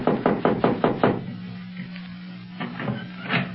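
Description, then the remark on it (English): A quick run of about six sharp knocks on a door, evenly spaced, then a pause and a few softer knocks, with a low steady hum underneath. “I'd hate to knock and have an Arab open the door and start jabbering Arabian at us.”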